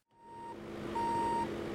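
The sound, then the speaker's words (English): A semi-truck's reversing alarm sounds two steady, evenly spaced beeps over a low diesel engine rumble while the truck, packed with hundreds of bear-resistant trash cans, is unloaded on delivery day at the National Elk Refuge near Jackson, Wyoming. No one is talking. “A semi-truck packed with hundreds of bear-resistant trash cans is being unloaded.”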